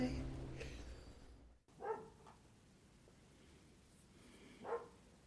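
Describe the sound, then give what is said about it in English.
A dog barks twice, single muffled woofs a few seconds apart, over a low steady background hum after an earlier sound cuts off abruptly. “I gotta go let the dog in.”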